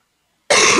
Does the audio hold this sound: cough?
yes